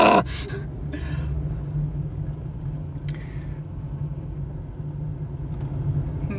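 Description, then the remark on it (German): A car engine hums steadily at low pitch as it drives through an echoey parking garage in Koblenz looking for a free space, with a few brief breathy noises and a faint click near the start and middle. “Vielleicht nicht in diesem Parkhaus, aber irgendwo wird eine Lücke frei sein.”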